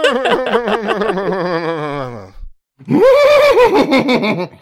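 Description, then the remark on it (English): Two people take turns imitating a horse whinny with their voices, each trying to make the best horse noise, a long, wavering, quavering neigh, loud, separated by a brief pause. “Everyone make your best horse noise.”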